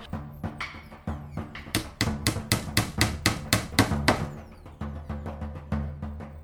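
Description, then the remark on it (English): A hammer drives a nail to fix a charm in place, with a steady run of sharp, ringing blows, about twenty strikes in quick succession, fairly loud, over a low sustained tonal hum. “Trigvi, leave that bread and help me nail this in.”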